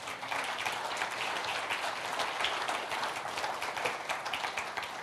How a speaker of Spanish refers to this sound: Denle un fuerte aplauso a Dios, amén.